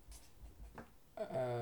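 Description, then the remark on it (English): A producer's pen scratches briefly and faintly across paper in a few short strokes as he writes a note, before a man's voice starts talking. “Producer Fred has just written on his piece of paper, get a life.”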